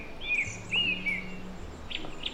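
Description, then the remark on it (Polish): A song thrush delivers clear, repeated whistled phrases from tall fir trees in the Tatra Mountains, while a goldcrest's very high, thin notes chime in faintly, over a low steady background rumble. “Tak, ale w tym momencie tylko śpiewa śpiewak i myśli królik.”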